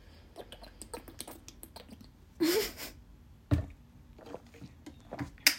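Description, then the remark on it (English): A single short, hissy slurp of a sip of water rises sharply midway, surrounded by scattered faint clicks and small mouth noises, with no talking. “Now you just get to hear me slurp.”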